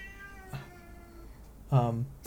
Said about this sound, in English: Wow, that is a very loud cat.